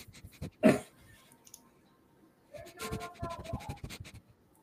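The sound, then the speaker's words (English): A person sniffs loudly into a microphone, imitating a swamp rat smelling crawfish etouffee on the streets of New Orleans: one sharp snort, a pause, then a quick run of short breathy sniffs. No talking. “For those listening, that's me sniffing in the mic.”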